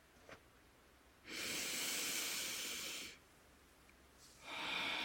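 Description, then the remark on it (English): A long, deep, breathy inhale or exhale lasting nearly two seconds, followed by a pause and the start of another breath, airy with a hissing quality, during a guided breathing meditation. “breathing the earth energy up into the heart.”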